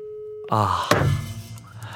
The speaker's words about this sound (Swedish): Vad innebär det här? La han på? Han tryckte upptaget.